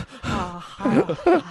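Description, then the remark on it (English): A single voice performs exaggerated heavy breathing, fairly loud, in three breathy, voiced bursts that swoop like gasps and groans, with no words spoken. “Don't worry, I'll get out of this with some sweet, heavy breathing.”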